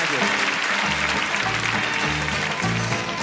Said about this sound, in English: See them all clapping your hands there. Come on, let's see them all, everybody. Come on, everybody.